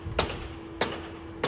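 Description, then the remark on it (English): Three sharp, evenly spaced metallic strikes ring out about every 0.6 seconds as a man hammers with two hammers, over a steady low hum with no one speaking. “It's a guy. He's got two hammers.”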